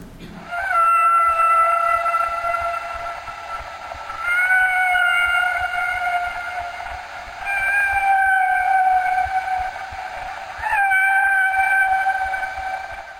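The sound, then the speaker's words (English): Humpback whale song: four long, harmonic moaning tones, each lasting about three seconds at a steady mid pitch with slight rises at the start, separated by brief pauses, with no talking. “Okay, so now we're going to listen to an example of a humpback whale song.”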